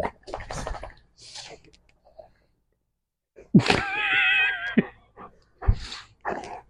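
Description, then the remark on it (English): Dog noises: a drawn-out, wavering high whine or yowl in the middle, with short yips and huffs before and after, mixed in with people talking, as the pet dog play-bites someone's arm. “Dog noises in the background.”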